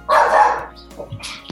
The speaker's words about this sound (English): Oh my God, I'm afraid my dogs are going to bark.